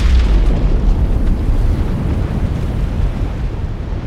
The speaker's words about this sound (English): At the moment the bomb detonated, the pre-dawn sky lit up, brighter than the sun, and the landscape was eerie and beautiful, in gold and gray and violet, purple and blue.